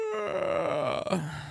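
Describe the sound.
A voice imitates the character Scotch Hops waking up with a long stretching yawn, a drawn-out groaning vocal that rises and wavers before trailing off, fairly loud with no words.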